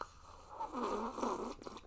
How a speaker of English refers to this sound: Okay, hold on. I'm going to take a sip of my coffee real quick.